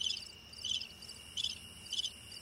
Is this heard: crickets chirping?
yes